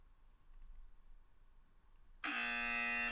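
A loud, harsh game show buzzer cuts in abruptly after a stretch of quiet background noise and holds steady for about a second, with a dense, rasping harmonic tone, as a player buzzes in to answer a basketball trivia clue.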